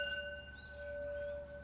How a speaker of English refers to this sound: All right. Well, on that note, I will cheers you. Cheers, friend. Happy reading.